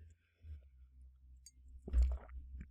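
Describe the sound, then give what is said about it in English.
A quiet sip of water with a soft wet swallow about two-thirds through, heard over low background hum with no talking. “yeah, drink of water here.”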